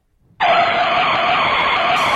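A car's brakes squeal loudly, a harsh high-pitched screech that starts abruptly after a brief quiet moment and holds steady for nearly two seconds without easing off.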